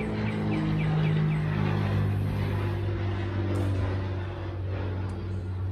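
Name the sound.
airplane passing overhead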